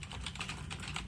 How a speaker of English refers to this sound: I can hear everybody typing, yeah.